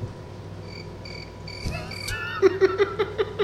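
Crickets chirp in steady, evenly spaced pulses, a thin high trill that quickens into a brisk rhythmic series of chirps near the end, with no voices present.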